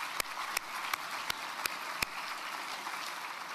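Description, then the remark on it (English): An audience applauds with a soft, steady crackle of many hands, and a handful of sharper individual claps pop out at a quick, even pace during the first couple of seconds. “We can clap at that.”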